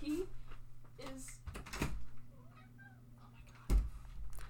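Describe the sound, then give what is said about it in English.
A cat meows a few times to be let in, in short, rising-and-falling cries, with a couple of sharp door-like clunks and faint household noise around them. “I have to let my cat in, and I am so sorry.”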